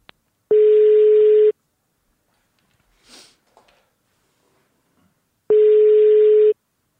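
Two steady one-second ringback tones of an outgoing phone call to a Telenor mobile that goes to voicemail, loud and clear, separated by about four seconds of near silence with a faint sniff in between.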